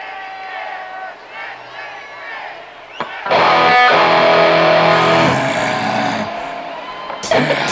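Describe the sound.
A crowd chants in a steady, voiced drone for a few seconds, then a loud, harsh, distorted growl bursts in and holds over the roaring crowd before cutting off.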